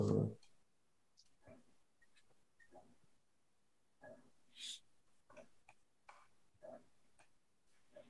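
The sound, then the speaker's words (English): Small dice rattle and clatter across a hard surface in a scattering of quick, irregular clicks and taps, fairly quiet, with a brief muffled sound at the start; a luck roll of a D100 in a tabletop role-playing game. “Give me a luck roll.”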